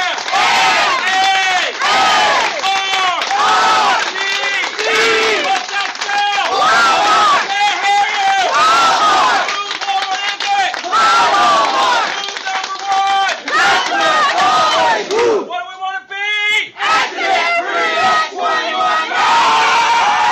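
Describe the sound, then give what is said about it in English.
A loud crowd roars continuously, many voices shouting and yelling over one another in overlapping surges, with a brief rougher, rattling burst near the end before the roar resumes. “You hear that fucking roar?”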